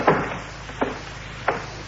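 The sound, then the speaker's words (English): A door is closed with three short, dull knocks spaced unevenly, the first the loudest, over a low steady hum with no one speaking. “Yeah, could I close the door, Captain?”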